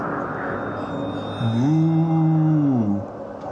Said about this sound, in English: Moo.